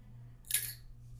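A single brief, crisp crunch of someone biting into food, bright and crackly, rising out of a steady low hum and fading quickly.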